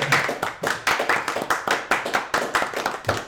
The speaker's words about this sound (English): Round of applause.